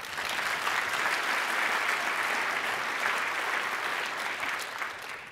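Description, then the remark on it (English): An audience claps steadily for several seconds, a dense, even wash of applause that holds its loudness throughout and thins slightly at the end. “Give her another hand of applause.”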